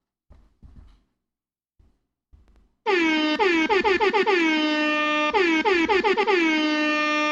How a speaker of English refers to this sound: One of these days, I'm going to get these air horns the way I want them to go.